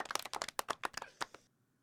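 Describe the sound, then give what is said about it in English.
A brief round of hand clapping, a dozen or so quick, slightly uneven claps at low volume that stop abruptly, followed by near silence. No one speaks. “Give him a little clap here.”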